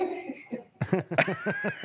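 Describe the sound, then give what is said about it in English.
A short cough or two, followed by a burst of rhythmic laughter with quick repeated voiced pulses. “What a start. A cough and a laugh.”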